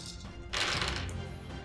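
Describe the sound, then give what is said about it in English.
A die rattles and tumbles across a tabletop during a tabletop role-playing game, in a quick burst of clattering taps that settle into light rolling, with no one talking. “And with the raft die, let's see what happens.”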